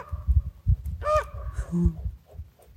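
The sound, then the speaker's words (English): A raven gives a single hoarse, croaking call, rising briefly above a steady low rumble of wind or outdoor background noise. “Hello, Raven.”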